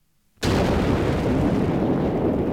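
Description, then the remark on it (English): A nuclear explosion blast erupts suddenly after a moment of quiet, then rolls on as a loud, sustained, deep rumbling roar with no voices present. “The amount of energy generated by a nuclear explosion is enormous.”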